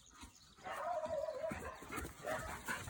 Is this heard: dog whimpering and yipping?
yes